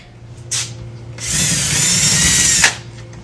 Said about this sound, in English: Tony's drilling holes for the anchors for our wall mount TV. It took us a while to get this right where we wanted it, but it's on the studs and it's perfectly level.